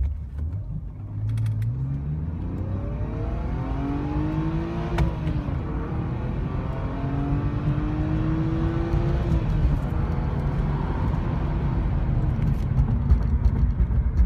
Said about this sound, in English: Just quieter and all, and less grit, so smoother. Yes. More airy, more of that. Yes. And it revs really nicely. It pulls all the way to 7,000, which feels absurd to be driving a gigantic Mercedes living room.